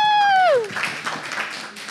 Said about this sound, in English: Oh, thanks. Shout out for …. Give a round of applause for ….